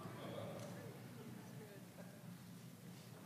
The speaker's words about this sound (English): Oh, you don't have to clap on that one. That's okay.